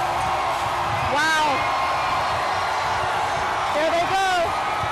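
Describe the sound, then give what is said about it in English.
A dense crowd roars continuously at a World Series victory parade in downtown Houston, with confetti falling as players pass on fire trucks; loud whoops and rising, drawn-out screams cut through twice over the steady wall of cheering and shouting. “Everybody is screaming at the top of their lungs.”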